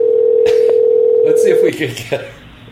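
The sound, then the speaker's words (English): A steady telephone line tone hums loudly for over a second as a call is placed from a radio show phone, then cuts off abruptly, giving way to brief voices and clatter on the line. “Let's see if we can get her on the line”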